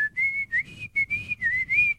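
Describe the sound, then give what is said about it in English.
A person whistles a short, lively tune imitating the Globetrotters' warm-up whistle, several connected phrases with small pitch slides and brief breaths between them, clear and fairly loud with no talking. “Do the whistle that they do.”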